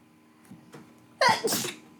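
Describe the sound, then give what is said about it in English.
A single loud, sharp sneeze bursts out after a couple of quiet breaths, with a quick inhaled catch followed by a forceful, hissing exhale. “But I'm going to sneeze.”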